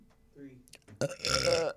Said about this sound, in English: That was like two and one, honestly. Okay, thank you. That was one burp.